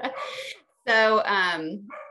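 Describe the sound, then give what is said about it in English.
A dog barks loudly, set off by a new puppy: a rough bark, a brief pause, then a long drawn-out yowling bark that slides down in pitch, followed by a quick short yip. “We have, Linus got a new puppy and she likes to make my other dog bark. So this is what they're doing right now.”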